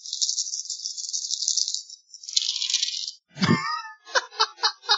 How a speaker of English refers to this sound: Okay, I rolled 8 dice. I got 5 twos.